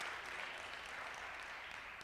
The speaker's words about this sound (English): go ahead and give him a hand clap for praise.